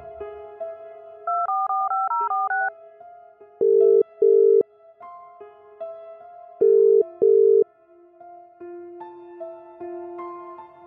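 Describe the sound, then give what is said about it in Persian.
A quick run of telephone keypad tones is dialed for a call placed from a meeting to His Majesty, followed by repeated pairs of loud ringing-tone bursts with pauses between, over a steady background of tonal hum. “تلفن کردن جلسه همونجا.”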